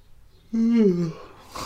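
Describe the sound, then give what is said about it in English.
A single yawn: a drawn-out voiced groan that bends in pitch and fades, followed by a soft breathy exhale. No one speaks. “I don't know why I'm so yawning.”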